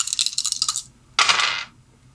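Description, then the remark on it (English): Real dice are rolled for a game: they rattle in quick clicks for under a second, then give a short, bright clatter as they tumble across a hard table, fairly loud, with no voices. “So I'm just going to roll actual fucking dice.”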